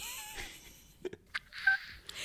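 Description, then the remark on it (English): A few short electronic beeps from a telephone keypad being dialed, quick and irregular, at a moderate level with no voices, ending in a brief muffled clatter. “Cue PTA phone chain.”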